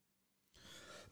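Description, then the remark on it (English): A single harsh, breathy cough bursts out after a moment of near silence, a raspy rush of air lasting about half a second before tailing off. No one speaks. “I am so freaking sick of coughing.”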